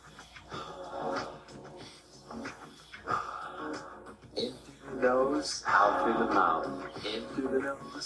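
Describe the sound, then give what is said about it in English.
Rapid, rhythmic breathing exercise, breath of fire at double speed, called alkaline breathing: quick forceful breaths pumped in a steady pattern, fairly loud, with a harmonic, voice-like tone running through it. “Alkaline breathing.”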